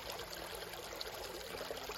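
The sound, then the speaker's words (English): Steady rush of flowing stream water carrying bubbles downstream, a continuous bubbling wash with no pauses and no voices over it. “And, you know, as you look, you can see it going down the stream, the bubbles going down the stream.”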